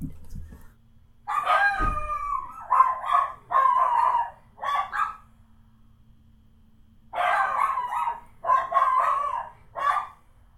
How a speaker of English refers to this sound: Somebody, you might have heard the dogs barking there. Somebody knocked the door.